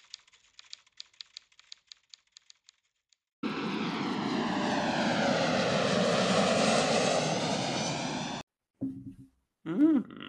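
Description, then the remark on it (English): Boeing 747 jumbo jet engines roar loudly for about five seconds with a rising, shifting whine, like the jet passing by. Light keyboard tapping comes before it, and brief muffled sounds follow. “The world's first jumbo jet, a Boeing 747, made its first commercial passenger trip from New York to London.”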